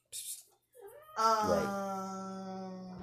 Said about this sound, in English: there's my cat. There's the cat. Cat got a bowl.